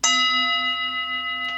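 A hand bell is struck once and rings out with a clear, sustained metallic tone that lingers loudly, with a faint tap near the end and no voices.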